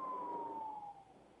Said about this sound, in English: Yeah. I'm sorry. There's an ambulance coming by. I'm like, oh.